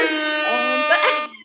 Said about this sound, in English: I had to pause a big time for the air horn. A note to self. I'll make sure. You're getting it. She's getting it already. She's got it already. If you say something hot, we got to blow the air horn.